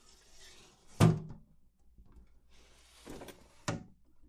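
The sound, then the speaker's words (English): A door opens with a sharp wooden thunk, followed by a quiet pause and then two softer clunks and rattles as it swings and settles. No one speaks. “The door is opening.”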